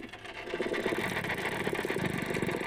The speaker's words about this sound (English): Back on the lagoon, a drama is about to unfold. There you go. There you go. That's a dolphin.